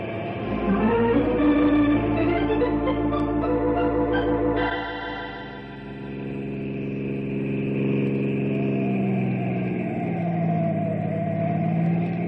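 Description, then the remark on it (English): A car engine revs hard and climbs in pitch, then settles into a steady, loud drone as the car speeds along a hilly, curvy country road, trying to shake off a patrol car following it, with no voices over it. “That patrol car's following me. But I'm gonna shake him and get away.”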